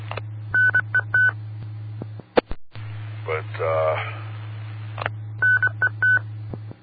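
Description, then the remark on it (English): Quick runs of short, high electronic beeps from a computer, in two clusters separated by a brief spoken word and some crackle, with a steady low hum running underneath. “Computer beeped.”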